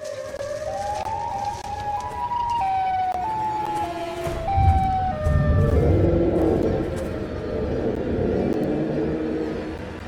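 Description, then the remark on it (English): An eerie, siren-like wail of the creature Siren Head that steps up and down in pitch, layered over a heavy, growling low rumble. It is loud and continuous for about ten seconds, with no voices. “For future editing purposes, play the sound of siren head in 3, 2, 1.”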